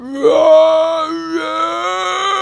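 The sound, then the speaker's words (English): A voice lets out a loud, sustained strained wail, imitating the unearthly shrieks of a creature attacking people; the pitch swoops upward early, then holds a quavering, groaning tone for about two seconds with no words. “It flew at them, cawing and biting, voicing unearthly shrieks the entire time.”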